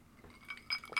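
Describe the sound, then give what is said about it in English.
Glasses of bourbon whiskey clink together in a toast, a few bright ringing taps in quick succession, fairly crisp against a quiet background with no talking. “Let's get a little cheers. Little traditional cheers.”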